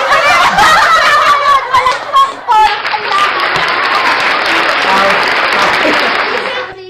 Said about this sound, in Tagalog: paki, ano yung palakpak?